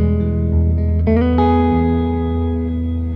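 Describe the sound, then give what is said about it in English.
Electric guitar played through a Chase Bliss Audio Dark World reverb pedal: sustained, loud chords with two fresh strums about a second in, each blooming into a long, wispy wash that keeps ringing throughout. No one speaks. “I don't know if it's warmth, but it's like this cool reverb pedal and like...”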